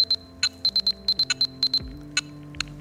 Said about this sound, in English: But then we really did something interesting on the back. We call it the Glyph interface. We've perfectly synced the Glyph lights with our ringtones. Let me show you.